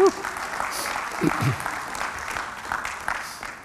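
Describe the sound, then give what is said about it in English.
An audience breaks into steady applause for a couple married in 1959, coming up on 60 years of marriage, a dense wash of many hands clapping at an even level for a few seconds, with faint voices mixed in underneath. “We should clap for that.”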